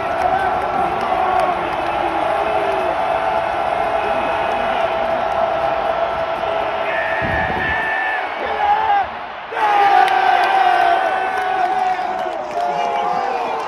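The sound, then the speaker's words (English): A recorded crowd from Buffalo cheers and roars continuously, with whoops and shouts rising over a dense wall of voices, briefly dipping before surging back loudly. “I think I'm just going to insert that fucking crowd from Buffalo again.”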